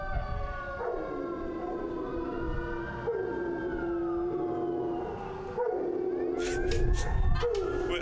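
A dog howls in long, wavering, drawn-out tones that rise and fall for several seconds, with a few rougher, noisier bursts near the end.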